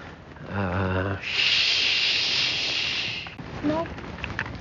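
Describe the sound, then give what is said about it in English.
A voice imitates ocean waves with one long, steady "shhh" lasting about two seconds. Brief talking comes just before it, and soft vocal sounds follow. “But mine sounded like the ocean. It waves.”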